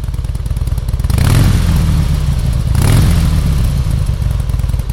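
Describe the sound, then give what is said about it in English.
A Ural motorcycle engine idles with a steady low rumble, then revs up twice in quick surges, each swelling louder before settling back to a throaty idle. No voices are heard. “Ladies and gentlemen, I'm talking about Ural motorcycles.”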